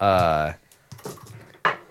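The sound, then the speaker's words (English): Pens are thrown and clatter down in a few sharp plastic clicks and knocks, spread over about a second, right after a brief voiced sound. “What are you throwing pens”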